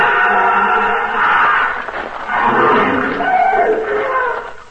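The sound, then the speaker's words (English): An elephant trumpets loudly, two long, brassy blasts separated by a brief dip, with a harsh roaring edge and a slight echo. “Ganga was not with Tila. The elephant returned riderless.”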